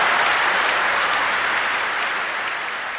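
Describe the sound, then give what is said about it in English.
A crowd applauds loudly and steadily, a dense wash of clapping mixed with cheering that holds for about three seconds and fades only slightly toward the end. The room of people cheers the announcement that the international airport will open on the 13th of March. “To have this room of people cheer like that for an airport, there is something else going on here.”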